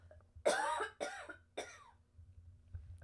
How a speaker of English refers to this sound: Excuse me one second. I have to cough.